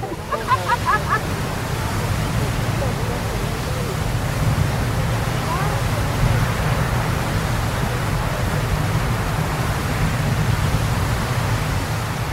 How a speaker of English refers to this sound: This would be Old Faithful erupting next to you, the most famous of Yellowstone's features. It does that all the time, with similar blasts coming from the ground at least every 2 hours.